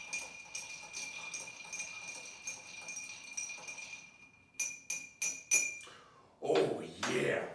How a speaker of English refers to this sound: So then we stir the drink. If you're like me, you have to watch out for your tassels to get into your cocktail. Stir for about 20 seconds.